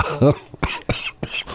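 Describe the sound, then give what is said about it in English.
A short run of harsh coughs, three or four abrupt bursts in quick succession, preceded by a brief throaty vocal sound. “Excuse me, that made me cough.”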